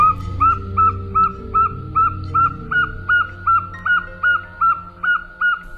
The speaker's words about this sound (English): It's today's Talking Bird's featured feathered friend, Egolius acaticus, the northern saw-whet owl, capturing your heart and lots of mice, maybe in a woodland near you.